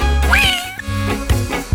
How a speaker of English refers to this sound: Is that Freddy the cat?